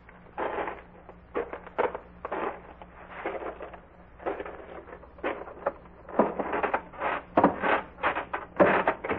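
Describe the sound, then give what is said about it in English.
Footsteps on the three creaking wooden porch stairs of a farmhouse, a steady run of scraping wooden creaks and thuds with a few brief pauses, no voices. “A farmhouse with a barn only 12 steps away. 12 steps away from a porch with three creaking stairs.”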